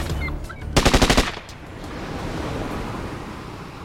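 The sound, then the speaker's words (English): Ocean waves break on the shore in a steady rushing wash, with a brief burst of rapid rattling pulses early on before the surf settles into a continuous hiss. No one speaks. “As the first wave laps the shore, the sea embraces the turtles.”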